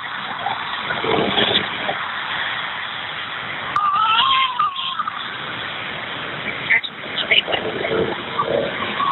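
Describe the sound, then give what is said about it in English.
A baby boy cries in wavering, high-pitched wails over a muffled, phone-quality line, with steady road noise from a moving car with hazard lights on, heading to the hospital in peak Nashville traffic, and voices talking faintly alongside. “So I guess him crying is a good thing.”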